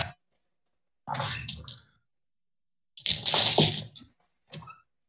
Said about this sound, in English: Dumping dice all over the place.